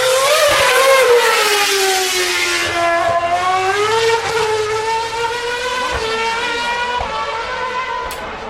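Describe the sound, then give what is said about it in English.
A Caterham Formula One race car screams past, its loud, high-pitched engine whine falling in pitch, then holding steady and climbing slightly through gear changes. No one speaks. “Here comes a Caterham.”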